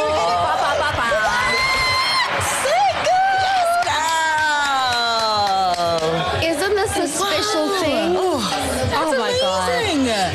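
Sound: audience applause and cheering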